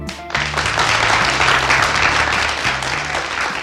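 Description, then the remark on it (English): Steady audience applause on a show, welcoming Christopher Pommerening, a founder of the Learnlife learning community. A dense wash of many hands clapping at a fairly loud, even level, with low music-like tones running underneath the whole time. “So, to learn more about how it started and what makes it better, let's have a big round of applause for Christopher Pommerening.”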